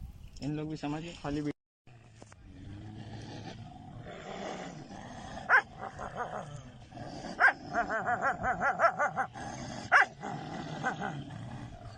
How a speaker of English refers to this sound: But yeah, this is pretty much dogs eating human remains. That's pretty much it.